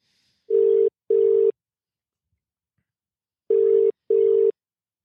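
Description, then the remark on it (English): A phone line ringing out: two clear double-pulse ringback tones with a long pause between them, steady and electronic, with no talking. “We need to try and get this young man on the phone, but he is a bit busy.”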